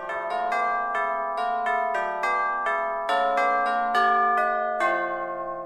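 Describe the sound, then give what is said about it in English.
Bells in the tower of the City and County Building in Denver ring out a steady melody of newly written music, each struck note sharp at the onset and sustaining with rich overtones as the tune moves through about a dozen tones, loud and clear with no voices. “The chimes are new music written for the bell tower at the City and County Building.”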